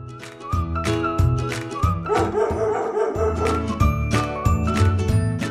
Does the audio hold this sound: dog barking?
yes